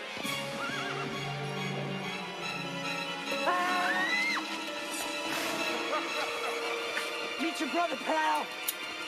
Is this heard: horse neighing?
yes